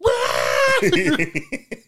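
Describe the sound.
A voice imitates the raw screaming that children do at a playground: a loud, shrill, sustained wail that slides downward in pitch, then breaks into short choppy bursts that sound almost like laughter.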